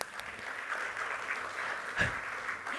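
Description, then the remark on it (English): A room full of people claps steadily, a dense, even patter of many hands lasting a few seconds at moderate volume, with no voices standing out. “Over there, round of applause.”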